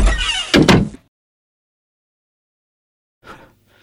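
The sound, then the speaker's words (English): A door swings and shuts firmly as someone leaves, with a loud double thud, then silence before a faint, brief rustle near the end. “Any minute now, he's gonna poke his head through that door, and he's gonna say, douche.”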